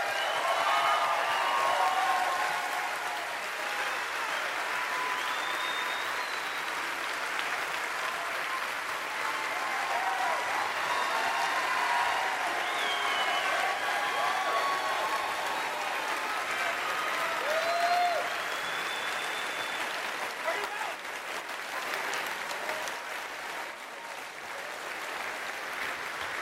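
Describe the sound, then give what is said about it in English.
Steady, sustained applause from a crowd, a dense crackle of many hands clapping at an even loudness for nearly half a minute, with faint voices and a few calls mixed in. “I appreciate that you will all clap for me continuing to be poor.”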